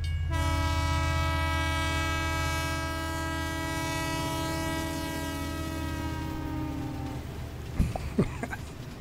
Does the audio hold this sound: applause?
no